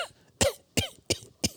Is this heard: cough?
yes